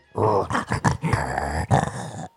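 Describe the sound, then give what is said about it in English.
A dog growls in a string of rough, rumbling bursts with short gaps, fairly loud and continuing for a couple of seconds with no talking over it. “There, for the dogs. That's how they say Merry Christmas.”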